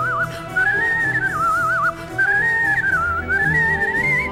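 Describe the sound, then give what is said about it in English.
Celebratory whistling rings out in bright, wavering phrases with short gaps between them, fairly loud, over a low background rumble with no talking. “Play some whistles. Just some whistles. celebratory whistles.”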